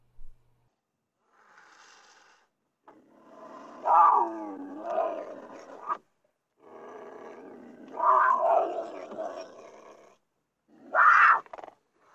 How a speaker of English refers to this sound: Can we insert some audio? Okay, this is where we will hypothetically insert a mountain lion audio.